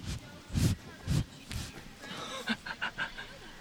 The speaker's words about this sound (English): That was a miniature horse breathing into the mic.